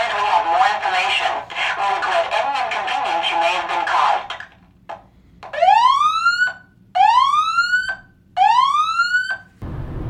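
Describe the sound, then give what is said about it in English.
A phone emergency alert alarm sounds loud: three rising, whooping electronic tones with short gaps between them, following a few seconds of dense, noisy background sound. “And all week on and off, this stupid alarm.”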